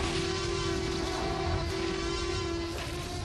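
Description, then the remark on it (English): A steady, low engine drone like a motorcycle crawling along, holding one unbroken humming pitch over a rough, noisy rumble for about three seconds with no talking. “In the background, that sounded like a very slow moving motorcycle.”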